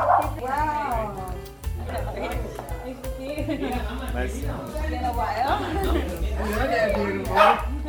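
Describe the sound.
A dog barks and yips repeatedly in loud, excited bursts while people talk over it and a steady low hum runs underneath.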